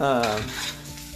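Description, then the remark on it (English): Breakfast food sizzles in a frying pan while a utensil stirs and scrapes, opening with a brief squeaky scrape over a steady hiss, with no one speaking. “You can also hear me making breakfast in the background”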